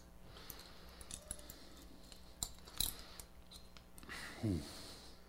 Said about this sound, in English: Now, if you're good, I'll take the cuffs off for you, but you leave the belly chain on. In case we have to put it back on. Yes, sir. I'll take the cuffs off and recuff you.